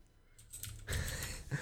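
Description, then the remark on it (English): Quick, uneven typing on a computer keyboard, a flurry of soft keystrokes that grows denser and slightly louder midway, with no talking. “I'm fucking typing, bro.”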